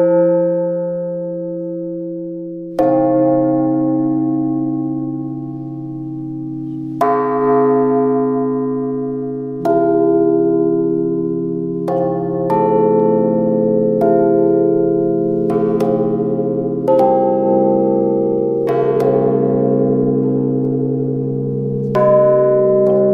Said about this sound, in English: The first time I actually heard these bells in this space was when I came here for the first rehearsal that I had.